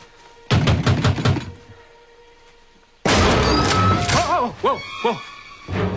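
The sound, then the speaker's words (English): Five or six loud, quick bangs as Dan bangs on the metal back door of the hatch, then a short pause before a louder, rougher burst of noise with wavering, ringing tones. “With that, despite having told Sawyer that he should not be banging on the hatch back door, Dan goes to bang on the hatch back door.”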